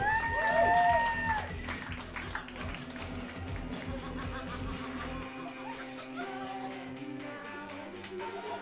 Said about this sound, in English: One more time, big round of applause for Stephen Hawking, ladies and gentlemen.